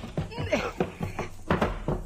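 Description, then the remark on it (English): A stuck door that opens only about 2 inches being shoved open: several heavy, dull thuds at an uneven rhythm, one after another, with faint voice-like sounds mixed in between the impacts. “Shove on it, dear.”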